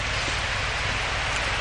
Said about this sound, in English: The rain is absolutely hitting her in the back.